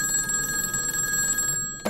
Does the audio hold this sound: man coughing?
no